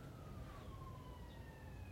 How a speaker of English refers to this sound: Here come the sirens, too.